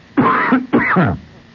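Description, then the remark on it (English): A person with a cold coughs twice in quick succession, two loud, rasping bursts with a brief pause between them and no talking. “Sorry about the cough.”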